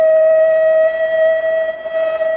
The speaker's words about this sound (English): There it goes. The whistle that means the end of the daytime shift at Central Aircraft.